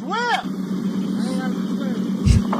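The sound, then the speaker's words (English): A borrowed family motorboat's engine drones steadily, a constant low hum that runs through the whole moment, as sheriff's officers ride it toward a man trying to steal a jet ski, with brief voices calling out over it and a thump near the end. “He's willing to let us use the boat.”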